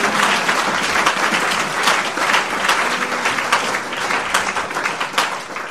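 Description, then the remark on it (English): A crowd applauds steadily for several seconds, a dense, sustained wash of many hands clapping at once, loud throughout without any talking over it. “A round of applause for the week.”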